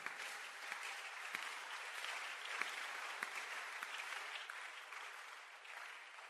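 A crowd of people clapping steadily, a dense and continuous wash of many hands applauding together with a few sharper individual claps standing out, holding at an even level throughout.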